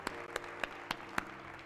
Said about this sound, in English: Oh yeah, go ahead and give God a hand clap for praise.